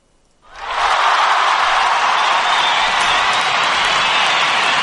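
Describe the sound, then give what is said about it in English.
An audience bursts into loud, steady applause with cheering mixed in after a co-host is introduced, rising quickly after a brief quiet moment and holding at full strength as a dense wash of clapping. “You want to give him a round of applause for that?”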